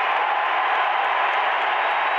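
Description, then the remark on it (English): A packed arena crowd on its feet at a Utah Jazz basketball game cheers in a steady, dense roar that holds at a loud, even level for about two seconds, with no voices speaking over it, after a Rudy Gobert layup from Donovan puts Utah up 51-41. “Crowd on their feet.”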